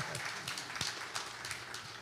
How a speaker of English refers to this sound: Can we just give him a round of applause? He hates that I'm doing this, but.